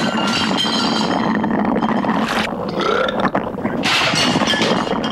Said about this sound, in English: Where he goes into the boiling water, but this one, it just, like, personifies and then, like, burps when it eats him. It burps, you're right. Jesus Christ, it burps. Yes, it does.